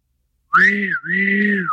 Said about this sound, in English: Steam's way up. Careful you don't burst your boiler. When there's any danger, the whistle blows.